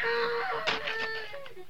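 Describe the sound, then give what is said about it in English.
A faint, high woman's scream drawn out in a steady, wavering wail, with brief bursts of rustling noise breaking through partway. No one speaks. “I don't dig unless I hear a scream.”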